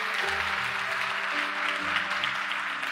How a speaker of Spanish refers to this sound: Dale un aplauso fuerte al Señor en este día.